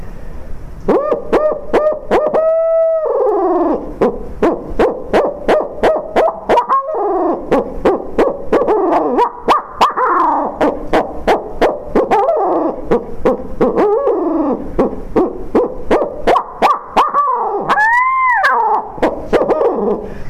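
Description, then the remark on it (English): A person imitates the laughing call of a barred owl to get owls excited, a loud series of rising and falling whooping hoots and cackles that carries on continuously without pause. “So I start doing something that's going to get the owls excited. And that's usually that laughing of the barred owl.”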